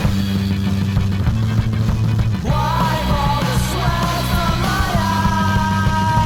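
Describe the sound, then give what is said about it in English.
Loud, dense rock music with pounding drums and heavy guitars in the bridge of a short rock song; about two seconds in, a raw shouting voice breaks in over the band and stays on top to the end. “Doesn't go back into a verse or a chorus, it just goes into just a really big thing of him shouting stupid, kind of freak out on the guitars and the drums and everything, and then that's it.”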